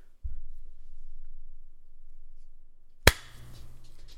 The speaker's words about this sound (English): It's okay. I'm just clapping for work.